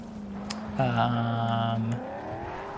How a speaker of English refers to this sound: So now I'm just driving across the desert towards the telecom tower.